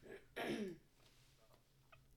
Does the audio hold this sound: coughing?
yes